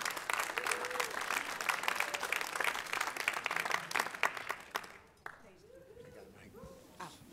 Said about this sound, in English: Let's give Jesus another hand clap.